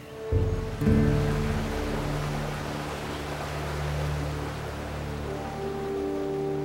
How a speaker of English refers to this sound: Nimue led Arthur through the trees to the heart of Avalon, where the great waterfall rushed into a cerulean pool.